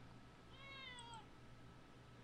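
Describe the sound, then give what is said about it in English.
A single drawn-out meow from a pet cat, about three-quarters of a second long, slightly falling in pitch at the end, over a low steady background hum with no talking. “Uh-oh. I'm being abused by my cat again.”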